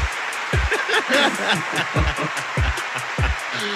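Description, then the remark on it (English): A steady roar of applause fills the background without pause, dense and loud, while voices talk over it and low thumping beats punch through every half second or so. “It's just like an just hour of applause roaring in the background.”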